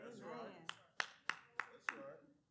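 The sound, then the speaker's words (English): Five sharp, evenly spaced claps ring out in a steady rhythm, as if several people clap in unison, over a murmur of voices. “Okay, ladies, I'm going to need y'all to sit up straight, not clap.”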